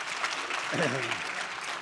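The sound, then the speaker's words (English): Steady, dense audience applause fills the whole stretch at an even loudness, with a brief voice calling out over the clapping partway through. “Give her a great hand clap.”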